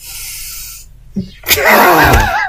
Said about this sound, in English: Man, it reeks. Why did you have to sniff so hard? It was so loud on the headphones. It's because I went closer to it.